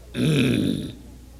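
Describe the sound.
A man imitates the irritated growl of a husband driving in heavy traffic, growling at his wife: one low, rough, throaty rumble lasting under a second, fairly loud and on its own, with no words around it.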